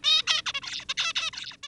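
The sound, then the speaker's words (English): A young male zebra finch sings a rapid string of harsh, buzzy, high-pitched syllables, about a dozen short bursts in quick succession, fairly loud and alone. “Here's a male zebra finch's song as it goes from a wee little bird to an adult.”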